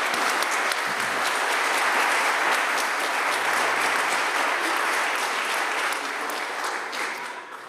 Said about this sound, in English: It takes a lot of courage to come up and share your story to strangers. If we could give him a round of applause, just thank him for sharing his story.